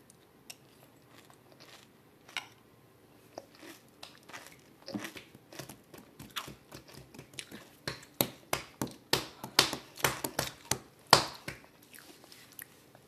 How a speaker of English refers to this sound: I'm eating Special K. I'm a Special K eater. I'm Special K. This is raspberry.